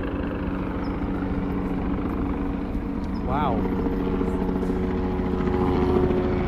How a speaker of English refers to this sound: Is that why the helicopter is going away, you think?